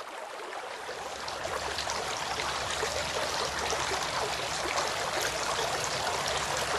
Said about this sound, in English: Washing the hands.